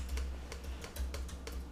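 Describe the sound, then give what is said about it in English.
Rapid clicking on a computer keyboard as players race through a quiz using keyboard shortcuts, a quick irregular run of sharp taps, steady at moderate loudness over a low background hum, with no one talking. “It's clicking competition. This is a game in and of itself. Stop that, you cheater. Figured out the keyboard shortcuts.”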